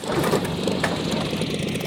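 The engine of the Wright Flyer number 1 rumbles and chatters at a steady, fairly loud level as it is started for the first manned airplane flight, a dense mechanical drone that holds constant throughout, with no voices over it, on a sunny, windy day.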